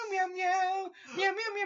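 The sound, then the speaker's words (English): A person's voice imitates a cat, giving two drawn-out meows back to back, fairly loud, with a brief dip between them. “I was just there, and because obviously I saw Star Wars, like, Boxing Day, and Star Wars on my mind, I was just there, and I was like, meow, meow!”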